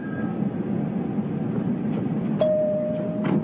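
An elevator door opening: a steady low mechanical rumble, then a sharp click followed by a sustained single chime tone, with a soft sliding whoosh near the end. No one speaks.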